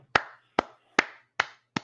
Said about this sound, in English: Clap it up for her. Clap it up for her.